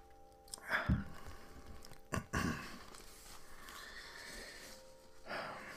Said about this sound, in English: If you can hear my chair, it's incredibly squeaky, and I didn't quite notice until now, so hopefully it doesn't bother you guys.